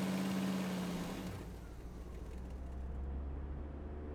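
An old pickup truck's engine rumbles steadily with a low, rough drone, a brief higher whine at the start giving way to a continuous loud motor hum as the truck drives along.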